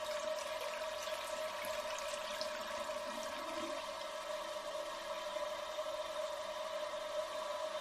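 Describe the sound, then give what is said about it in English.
A toilet flushing, with a steady rush of water and a faint humming tone running evenly for several seconds at a moderate, unchanging level, with no one speaking. “Just don't flush, or there'll be another flood.”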